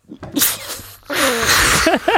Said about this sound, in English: I sneezed. That was the strangest sneeze I have ever seen.